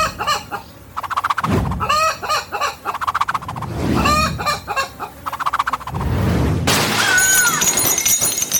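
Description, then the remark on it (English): A chicken squawks and clucks frantically in several loud bursts as it is swung around a church tabernacle during an exorcism, followed near the end by a sharp crash as a contribution plate is knocked onto the floor. “swung a chicken around the tabernacle, knocking a contribution plate onto the floor.”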